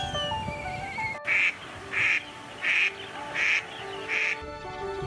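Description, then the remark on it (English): An Indian spot-billed duck quacks five times in a steady, evenly spaced rhythm, the calls clear, in a 10-hectare organic rice paddy in Chishang Township, Taidong, over a background of outdoor ambience with faint chirping birds. “From the north, an Indian spot-billed duck paddles along.”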